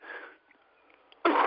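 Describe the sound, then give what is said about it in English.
Someone coughs: a rough, breathy burst, a brief pause, then a sudden louder harsh cough cutting in at the end. No one speaks. “Cough it up, brother.”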